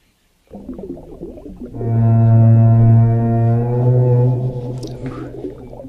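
A deep, drawn-out whale call moans for several seconds, rich in layered tones, preceded by watery, gurgling sounds and fading out at the end.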